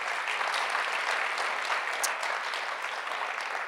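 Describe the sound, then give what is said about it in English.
An audience applauds the worship team together, a dense, steady wash of many hands clapping at once that holds an even loudness throughout with no voices standing out. “Can we just give this worship team a clap?”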